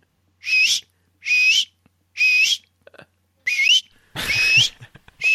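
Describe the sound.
A person whistles an imitation of a tawny owl, giving about six sharp, high calls, each with a rising upturn, spaced roughly a second apart and fairly loud, with no talking over them.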